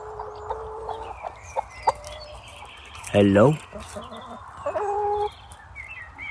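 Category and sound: bird, chickens clucking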